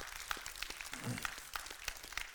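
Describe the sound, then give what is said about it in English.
A crowd of breakfast guests on Christmas morning clapping their hands in a steady, dense patter of overlapping claps, fairly soft throughout. “Everybody who was here to eat breakfast, would you start clapping? Just put your hands together and make some noise.”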